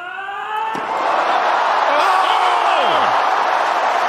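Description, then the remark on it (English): A single sharp thwack of a tennis shot by Andrei Rublev, then a big crowd erupts into loud, sustained cheering and roaring, with whoops and whistles rising and falling through the noise. “The crowd are up.”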